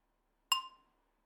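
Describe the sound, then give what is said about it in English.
A single bright clink of glasses touching in a toast, clear, with a ringing tone that fades out quickly in quiet surroundings. “Cheers. Cheers.”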